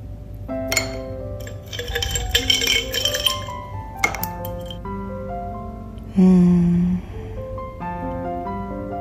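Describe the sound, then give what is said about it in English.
Ice cubes clink against a bowl of berries in coconut water, a run of bright, irregular taps whose ringing tones linger and overlap, with one louder, sustained ring near the end. Nobody speaks. “I like ice with my cereal.”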